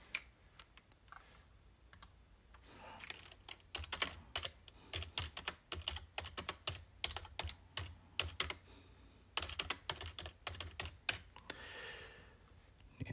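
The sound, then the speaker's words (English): Steady typing on a laptop keyboard while someone looks up a Bible verse, with quick bursts of light clicking keystrokes and brief pauses, moderately quiet, with no voices. “Sorry, you guys hear me typing on my laptop.”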